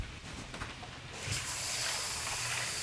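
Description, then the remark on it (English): Water is poured into an ice bath over boiled Brussels sprouts placed on top of the ice, starting as a soft trickle and swelling after a second into a steady, loud, hissing rush that continues to the end. No one speaks. “on our Brussels sprouts, so I put them out and I put them in an ice bath, and I can. So you actually put them on top of the ice. The ice, and then I'm just gonna add water right now.”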